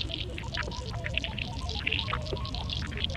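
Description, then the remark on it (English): A chicken wing frying in hot mineral oil, heard through microphones submerged in it: a dense, continuous churn of bubbling and popping with a low rumble underneath, steady throughout. “dropping a chicken wing into hot mineral oil with the mics actually submerged in the oil.”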